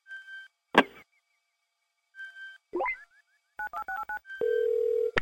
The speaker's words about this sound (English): Let's go to the random phone dialer and make some calls. Maybe we should call a different random phone number.